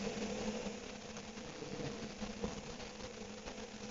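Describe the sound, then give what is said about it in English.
A car engine, just started after a car door closes, runs at a steady idle, a continuous low rumble with mechanical hum and light vibration, moderately loud, with no voices over it. “Car door closes. Engine starts.”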